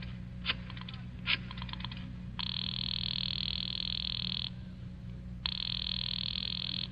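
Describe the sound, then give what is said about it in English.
A quick run of mechanical clicks, like a number being dialed, then two long, buzzy telephone rings of about two seconds each with a pause between, over a low steady hum. “I decided to phone him.”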